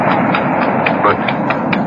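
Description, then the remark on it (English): A ridden horse gallops steadily on sand along an ocean shoreline, its muffled hoofbeats pounding in a quick, even rhythm, with a continuous rushing wash underneath throughout. “My horse feels the excitement as I do. I feel him extend himself.”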